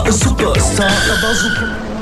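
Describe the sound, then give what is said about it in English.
A car engine revs and the vehicle pulls away as tires skid and squeal loudly across the pavement, the screech sustained for a couple of seconds with no talking. “Oh, never mind, just get in my car. Let's drive.”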